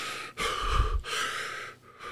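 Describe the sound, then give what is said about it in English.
A voice imitates heavy, drowsy breathing: a long, noisy airy breath in and out, then another, fairly loud, with no talking; imitating a man dozing off in a micro nap. “You know, you go into you go into that state where your eyes close, and then you could see the breathing, the heavy breathing that started.”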